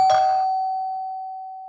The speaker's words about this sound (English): No sooner had Sassy disappeared than the doorbell rang.